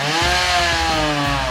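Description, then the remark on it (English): A chainsaw running on a fuel demonstrated by Zero Petroleum roars steadily, its engine buzz loud and continuous with a slight labouring shift as the blade bites through a big, melting block of ice, spraying water and ice, in a small airplane hangar on a very hot day. “the fuel being demoed was powering a chainsaw cutting through this big block of ice”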